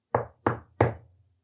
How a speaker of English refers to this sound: So she decided to head over to the house and knock on the door.